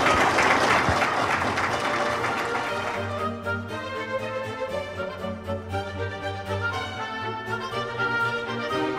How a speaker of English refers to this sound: I'm afraid our time has expired. Please join us in a round of applause for Robin.